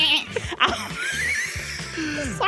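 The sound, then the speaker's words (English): A goat bleats in a shaky, wavering cry, with a few quick bursts before and after a longer quavering call, fairly loud. “Yeah, maybe I'll chat to this goat.”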